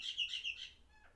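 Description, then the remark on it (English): A bird chirps loudly and rapidly in a bright, high-pitched burst of several quick notes, fading off toward the end with no one speaking. “That bird's really loud.”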